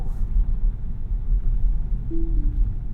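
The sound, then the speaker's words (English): Over a steady low engine and road rumble, a car's alert sounds as autonomous driving and cruise control end: a brief low tone that steps slightly down in pitch, lasting under a second. “Well, that sound means the autonomous driving has ended.”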